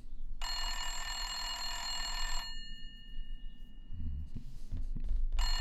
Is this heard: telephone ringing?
yes